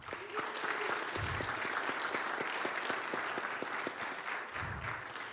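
Steady applause from an audience thanking the person who put the event together, a dense wash of many hands clapping at an even level throughout, with a couple of soft low thumps mixed in and no one speaking.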